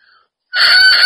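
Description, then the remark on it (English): A moistened cane bagpipe chanter reed sounds a faint brief note, falls silent, then buzzes loudly into a steady, bright, reedy tone that holds to the end. “Can you guys hear that it's vibrating better?”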